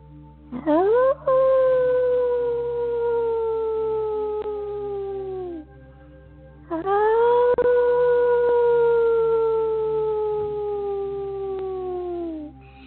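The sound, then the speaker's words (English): A person howls like a wolf twice during a guided breathing exercise, looking up at the moon. Each long sustained call rises at the start and slowly slides downward, with a short pause between them; the voice is fairly loud. “So still looking up in the moon, inviting you into this moment with a deep inhale, allowing yourself to howl and projecting forward the love with your sound.”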